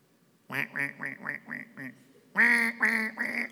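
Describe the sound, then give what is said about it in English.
A duck call, used during duck hunting season to call ducks in, quacks in a rapid series of short, nasal honks, first a run of about six evenly spaced quacks, then a louder, drawn-out sequence of three or four raspy quacks, clear. “And nothing makes me happier than shooting ducks in the face. You can tell I lived in Louisiana. I love it. Call them in.”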